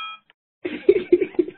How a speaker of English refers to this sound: Is that your cell phone ringing? It's not mine. No, it's not mine either. It's obviously something on your side.